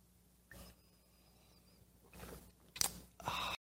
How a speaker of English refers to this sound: I like coffee. I like my coffee black. Sip.